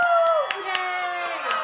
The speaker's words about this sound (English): And the crowd goes wild.